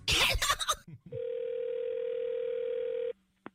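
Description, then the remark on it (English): A brief clatter of a receiver is followed by a steady, unbroken mid-pitched dial tone humming for about two seconds, then it cuts off and a small click sounds. No one speaks. “I believe we were disconnected, yes.”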